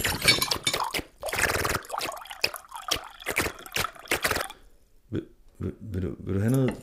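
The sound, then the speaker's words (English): A coffee machine brews with a run of sputtering, gurgling bursts and wet drips, pausing briefly before a few more spurts and a drawn-out bubbling, vocal-sounding gurgle at the end. “He's actually communicating with his coffee machine.”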